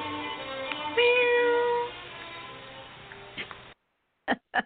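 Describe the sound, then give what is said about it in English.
A male performer doing sound effects imitates a cat, giving one drawn-out, wavering meow over a steady noisy background. Silence follows, then two quick, sharp knocks. “doing all the sound effects of the car crash, the cat.”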